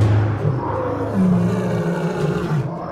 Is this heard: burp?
no